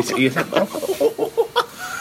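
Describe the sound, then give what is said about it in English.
A person imitates monkey noises with a quick run of repeated hooting vocal bursts, fairly loud, lasting about two seconds with no other sounds around it, while pulling a pint. “You can't see me, but I'm doing monkey noises whilst trying to pull a pint.”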